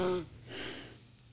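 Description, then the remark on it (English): A quiet snore from someone asleep: one short nasal snort that trails into a soft, breathy exhale, with nothing else going on around it. “So, to anyone listening on the audio, if you're hearing a slight snore, it's because her sovereign has officially tapped out and is snoring.”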